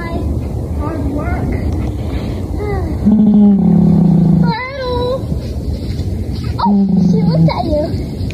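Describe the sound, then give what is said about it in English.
A donkey growls twice in loud, low, drawn-out bursts with a rough edge, separated by a short pause, over a busy, noisy background. “Donkey growling.”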